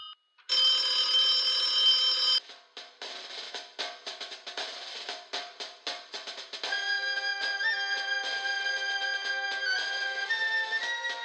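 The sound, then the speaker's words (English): A loud mechanical bell rings from an old telephone after a number is dialed, starting with a steady metallic trill, breaking into rapid rattling strikes, then ringing continuously again. No voices are heard. “Oh, it's ringing, it's ringing.”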